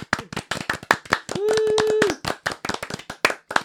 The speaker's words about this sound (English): I wonder how this records. I never recorded applause before. Let's record a bunch of it.